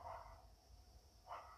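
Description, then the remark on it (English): Two dog barks roughly a second apart, one at the start and one near the end, fairly faint over a low rumbling background hum. “Get distracted by the dogs barking and everything.”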